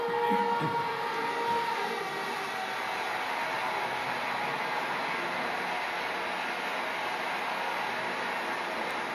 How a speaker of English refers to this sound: That's an express train, isn't it?